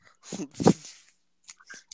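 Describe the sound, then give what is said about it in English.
A dog named Zeus chews and bites on a stick, biting off pieces and eating them, with two loud, splintery crunches followed by a few quieter, scattered gnawing snaps. “Like, literally, he's biting off pieces of a stick and chewing them up and eating it.”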